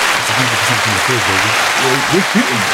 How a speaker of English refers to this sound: Hey guys, look, we've recorded 2 successful pods in 2 weeks. As a matter of fact, here's a round of applause.